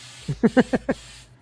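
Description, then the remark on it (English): Five quick, evenly spaced bursts of an aerosol spray can applying multicolor textured stone paint, each a short sputtering puff over a faint steady background hiss, moderately loud. “It puts out the multicolor texture on it.”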